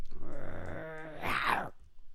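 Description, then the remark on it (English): A person imitates a growl, a low, rumbling vocal snarl lasting about two seconds that rises into a harsher, raspier burst near the end before fading. Fairly loud, with no other sounds. “She does not flee. She does not drop it. She just growls at you. What does a growl sound like?”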